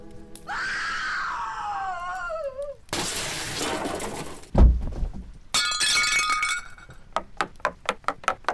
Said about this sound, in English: The board games were thrown across the room. The television was smashed